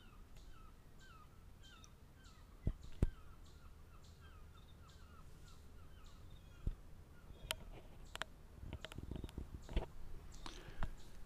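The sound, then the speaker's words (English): Gulls call repeatedly across a lake in northern Wisconsin or northeastern Minnesota on a foggy morning. Their harsh, raspy cries come in a steady series over a low outdoor hum, with a few sharp knocks and thumps near the end, while unseen boats are out on the lake. “the gulls out there.”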